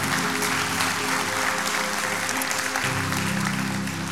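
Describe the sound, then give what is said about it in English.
An audience applauds steadily, a dense, even wash of many hands clapping at a constant loud level for several seconds, with a low sustained tone from an organ or keyboard underneath. “How many of you want, you don't have to clap for this one, but how many of you want to learn more about the fear of God?”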